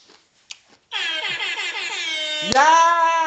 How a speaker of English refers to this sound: My air horn didn't sound like that. Her sounded better. I did that just for her.